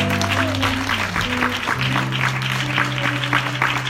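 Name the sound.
audience clapping hands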